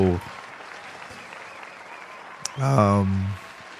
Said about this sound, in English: Let's applause one more time, man.